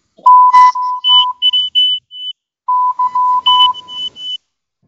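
Electronic beeps tap out a Morse code rhythm for YYZ, a mix of short and long tones at two pitches, in two loud bursts separated by a brief pause, with no talking.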